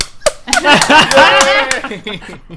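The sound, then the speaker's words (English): A handful of sharp, loud hand claps spaced irregularly, mixed with excited voices and laughter, mimicking a fan in a movie theater standing up and applauding at Easter eggs such as Jimmy Smits appearing on screen. “Like, Jimmy Smits, he's applauding. He's standing up and applauding.”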